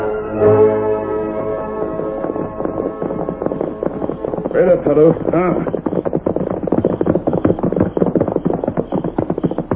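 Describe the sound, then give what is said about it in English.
Horses ridden by a couple of men gallop down a street in a fast, steady clatter of hoofbeats that fills the second half, following sustained droning tones and a brief voice. “A couple of hombres galloping down the street.”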